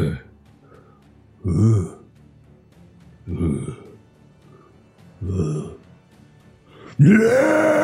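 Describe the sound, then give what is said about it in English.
A voice imitates a Tyrannosaurus Rex roar: three short, low, guttural growls spaced a couple of seconds apart, then a loud, sustained, rasping roar with a rising pitch that runs to the end. “And he just does this like Tyrannosaurus Rex roar, and you just see like a blizzard erupt from his mouth.”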